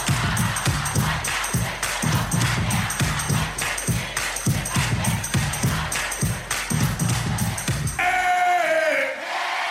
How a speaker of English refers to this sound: where he asked the crowd to sing the theme with him. Aww. And I just want to note the electricity of this moment.